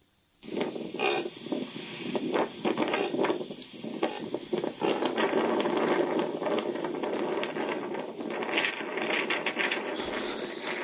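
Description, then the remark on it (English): A baby reindeer in the Arctic gives a honking vocalization, a run of rough, rapidly pulsed grunts, rattling almost like a ratchet, sustained for about ten seconds over steady wind noise. “And so here's one making what's called a honking vocalization.”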